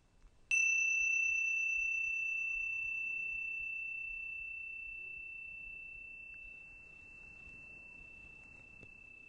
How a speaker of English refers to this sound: So this is how we do it. You just get yourself comfortable and come back into this place in the sound of the bell.